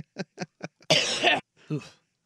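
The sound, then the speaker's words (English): A harsh, loud cough close to the microphone, preceded by a few short throaty bursts and followed by a softer, raspier cough trailing off. “It was from the, I don't know if it was him specifically, but it was somebody very near the microphone him, at least. Him coughing up the ball.”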